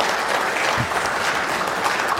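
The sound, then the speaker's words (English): A crowd applauds itself for raising $40,000 for new children's furniture, a dense, even wash of many hands clapping at a constant loudness for the whole stretch, with no voices rising above it. “And give yourself a round of applause.”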